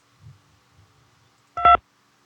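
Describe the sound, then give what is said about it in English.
A single telephone keypad tone beeps once, short and clear, as 2 is pressed in the Oregon Zoo's automated phone menu, after a stretch of near silence with a faint low rumble. No one speaks. “Press 2 for reception.”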